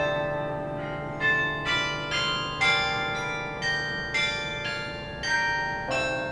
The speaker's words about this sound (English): If you've ever set foot on a college campus and heard the majestic bells of a bell tower marking the time or playing a tune, you may have been hearing a carillon.